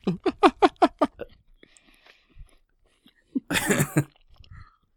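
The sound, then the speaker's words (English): A person chews loudly next to the microphone: a quick run of about six loud, wet chewing bursts, then a pause and a short, harsh crunching rustle before quiet returns. “So, chew loudly next to the microphone.”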